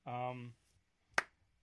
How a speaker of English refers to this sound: All right. Stop with the slow clap.